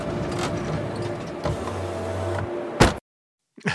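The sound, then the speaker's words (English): Steady mechanical hum inside a car, with a low droning tone and a whirring motor as the window rolls down, then a sharp thud as the door closes and the wind sound goes away, a sudden cut to silence, and a brief rustle. “And then we got car sounds.”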